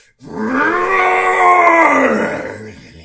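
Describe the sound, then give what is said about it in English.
A voice imitates the huge, magical guttural roar of a giant earth elemental, one sustained, rumbling growl that swells loudly for about two seconds with a harsh, gravelly texture before trailing off. “All of a sudden, you hear, like, what sounds to be, like, an enormous, magical, like, just guttural roar, like...”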